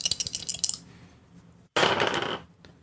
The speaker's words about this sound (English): Let me get some dice out. So dice. Just rolling in them. Is that a dice bag or an ice machine at a Hotel 8?